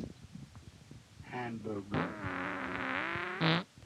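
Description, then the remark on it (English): A drawn-out, buzzy fart, fairly loud, wavering in pitch for about two seconds before ending in a short, sharper burst. “That was a legitimate fart that was caught.”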